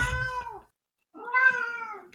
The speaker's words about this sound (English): Also, my cat's meowing. Can you hear my cat?